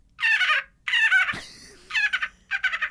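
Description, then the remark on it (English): A person imitates a dolphin with four loud bursts of high, warbling, rapid chattering squeals, with short pauses between them and no speech. “Did you know that I can make a dolphin noise?”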